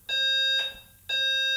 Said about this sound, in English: Is that the fire alarm? I don't know. So somebody pulled the fire alarm.